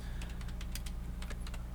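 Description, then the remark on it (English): Keys clicking on a computer keyboard as someone types with one hand, in an uneven, somewhat halting rhythm, about a dozen crisp taps over a steady low background hum, with no one speaking. “Yes, I'm typing with one hand.”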